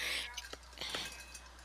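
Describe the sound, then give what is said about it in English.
A cup clinks a few times in quick, uneven succession while water is being fetched, with light, bright taps over a steady low hum, fairly quiet overall. “Somewhat out of breath almost because, as y'all can hear, I got my cup.”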